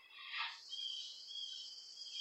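A cricket chirps in a steady, high-pitched trill that runs the whole time, fairly quiet, with a brief rustling burst near the start and no voices.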